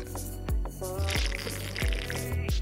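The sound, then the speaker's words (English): Loud, wet sipping of juice, with about four slurping gulps in an uneven rhythm, each a squishy burst with a quick falling gurgle. “Why do you sip so loud?”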